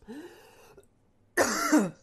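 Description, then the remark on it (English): Two coughing bursts from someone who choked on a drink from a can: a softer, rasping throat-clearing cough, a brief pause, then a louder, harsher choking cough with strained, wheezy edges. No talking. “Oh, I choked. I forgot you're not supposed to eat the can.”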